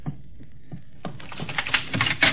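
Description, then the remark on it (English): A few soft knocks on a bedroom door, then the latch rattles and the bedroom door creaks open with a burst of clattering handle and hinge noise. “Open the door.”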